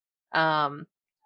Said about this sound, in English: Oh, there's a kitty. Kitty wants to say something too.